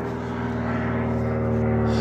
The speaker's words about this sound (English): Oh, here's a plane. I'll try to be louder than the plane.